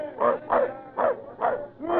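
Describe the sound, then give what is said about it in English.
A dog barks five times in a steady, evenly spaced rhythm, each bark short and sharp and moderately loud, aboard a sailing ship, with no other sounds competing. “Get that dog below deck out of the way!”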